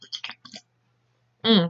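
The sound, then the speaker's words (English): Several short, wet slurping sips of Dr Pepper cream soda in quick succession, followed by a brief pause and then a louder voice starting to speak. “Sorry for slurp noises because I'm drinking Dr. Pepper cream soda, as always.”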